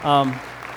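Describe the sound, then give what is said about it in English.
Audience applause for a departing couple, a steady wash of many hands clapping at moderate loudness, opening under a brief sustained vocal tone before the clapping carries on alone. “So everybody just give a round of applause for them.”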